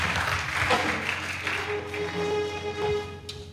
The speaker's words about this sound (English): Give the Lord a mighty clap offering and take your seat.